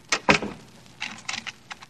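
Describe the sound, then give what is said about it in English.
A key turns in a door lock: two sharp metallic clacks, then a series of light, bright jingles and rattles as the keys shift, with no one speaking. “Do you have to lock the door?”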